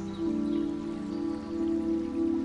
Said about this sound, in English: You continue walking until you encounter the second pool, known as the Pool of Self-Assurance, with a beautiful water fountain trickling from the center.